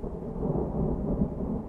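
A deep, continuous rumble of thunder rolls through a storm, low and steady with a slight swell, and faint rain hissing beneath it.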